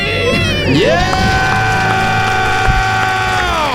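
Loud, joyful screaming from a couple from Pasadena, California, celebrating being debt-free swoops upward and holds as one long sustained shriek, with several voices yelling together in celebration, bright for nearly four seconds.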